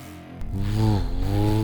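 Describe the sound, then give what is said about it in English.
A truck engine starts up after a brief transient and rises in pitch as the truck drives off, a steady low rumbling drone, moderately loud, with no voices. “The truck drove off.”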